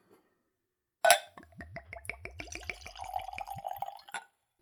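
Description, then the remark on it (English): Spirit poured neat at room temperature from a bottle into a clean Glencairn glass: a sharp clink, then a quick run of glugging splashes rising in pitch as the glass fills, ending with another light clink. “And now for a pour.”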